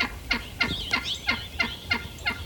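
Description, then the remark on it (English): An eastern wild turkey gobbles in a rapid, rattling series of about six pulses, loud, with no talking and only faint background noise. “Over the last 6 years, Texas Parks and Wildlife has released more than 750 eastern wild turkeys at nine sites.”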